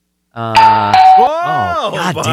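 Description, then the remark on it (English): An electronic doorbell rings, two steady chime tones followed by a warped, wavering melody that bends up and down in pitch, sounding distorted and off-key. “What did you do to your doorbell, dude?”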